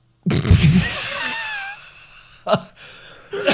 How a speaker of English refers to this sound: That one got you into a cough.